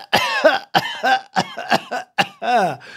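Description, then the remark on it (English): A string of exaggerated, deliberate coughs made for comedic effect, about six or seven sharp bursts in quick uneven succession, loud, with no talking in between. “100,000, those coughs were for comedic effect.”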